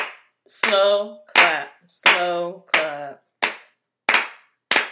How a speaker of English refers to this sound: Slow clap.